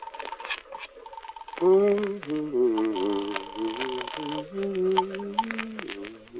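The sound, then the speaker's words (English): A telephone is dialed with a quick run of clicks, then a ringing tone sounds over the line while a voice talks over it at moderate volume. “Mind if I use your phone?”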